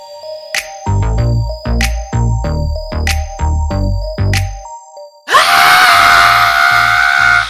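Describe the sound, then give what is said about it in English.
A person screams at full volume, a loud, raw, sustained cry that bursts in after several seconds of steady rhythmic thumps with ringing tones and carries on to the end. “That's pretty much how I'm starting my days these days, just full on scream.”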